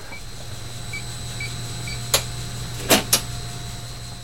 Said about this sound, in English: The attic space is dominated by a massive HVAC system. It's hum proof that it's working to keep treasures on the floors below at just the right temperature and humidity level.